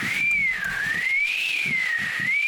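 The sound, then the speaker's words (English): A person whistles a long, unbroken tone that slowly rises and falls in pitch, mimicking wind howling past buildings, steady for a few seconds with soft low rumbles beneath. “No, because when I hear that, know the wind. Hitting the buildings going.”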